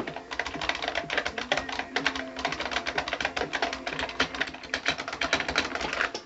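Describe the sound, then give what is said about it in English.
Rapid, loud typing on an IBM Model M buckling-spring keyboard, random keys mashed, recorded with a microphone right by the keyboard: a dense run of sharp clacky keystrokes with a springy metallic ring, continuous for several seconds with no voices. “For example, you kind of heard earlier, I'm just going to take a microphone and put it right by the keyboard here.”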